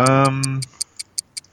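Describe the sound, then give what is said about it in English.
A brief sustained voice fades out, leaving a clock ticking in a quick, steady rhythm, about eight crisp, evenly spaced ticks at moderate loudness. “What's the ticking I'm hearing? That's a doom clock.”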